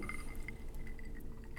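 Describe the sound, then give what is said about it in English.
Glasses clink together several times in a toast, light bright rings scattered over a couple of seconds, with a soft liquid swirl beneath and no voices. “Cheers to that.”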